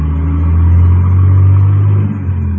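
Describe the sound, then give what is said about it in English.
A car engine rumbles steadily, a deep low drone holding nearly constant level for a few seconds as the vehicle pulls off in thick fog, with no voices. “We went across the street, got in the car, and took off.”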